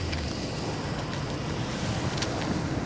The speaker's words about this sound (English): From around the corner, a Hummer and patrol car came racing towards us.